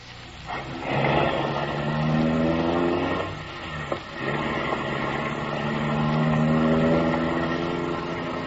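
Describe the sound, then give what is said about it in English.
A car engine revs loudly, its pitch climbing as the vehicle pulls away, with steady mechanical roar throughout and a brief thump partway through. “The car motor is idling.”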